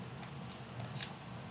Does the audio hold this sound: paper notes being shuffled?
yes